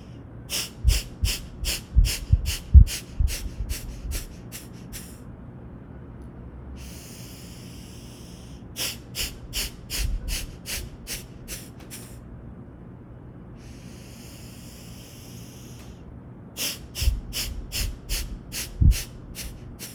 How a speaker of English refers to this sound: And then just out through our nose. Almost feels like you're, not like you're blowing your nose, but you're blowing air through the top of your nose and kind of whirling up.